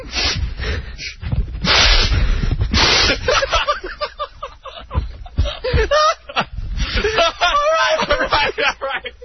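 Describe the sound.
Several loud, forceful sniffs as someone smells sample number three to try to match up a smell, each a breathy rush of air drawn through the nose, followed by people talking and chuckling.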